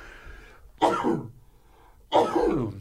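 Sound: sneeze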